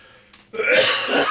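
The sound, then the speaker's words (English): After a brief quiet moment, a loud, harsh burst of throat clearing and coughing erupts, rasping for nearly a second with no talking. “I said, I'm about to start coughing like a motherfucker.”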